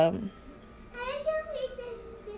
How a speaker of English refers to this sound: Do you hear my son? He's talking.